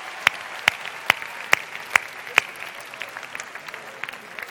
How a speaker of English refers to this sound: So, can we again applaud them and thank God? Thank you, guys.